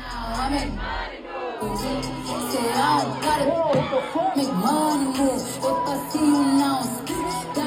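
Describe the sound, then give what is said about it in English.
A dull thud of a thrown microphone lands amid a loud, continuous crowd roar full of shouts, whoops and cheering voices. “You can hear a thud of the microphone.”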